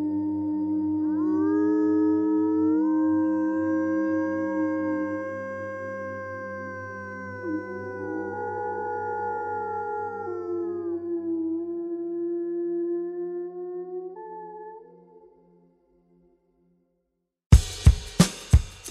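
Wolves howl together in long, overlapping, sliding notes that rise and fall for about fifteen seconds before fading out, followed after a brief silence by a short burst of sharp pulses.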